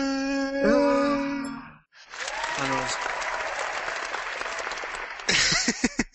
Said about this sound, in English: Yay! And the crowd goes wild.